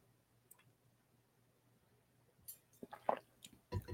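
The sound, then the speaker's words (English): Quiet mouth sounds: after a near-silent stretch, a few soft wet sips and gulps arrive in quick succession near the end, as someone drinks and swallows water. “So I'm going to take a real quick sip of water here.”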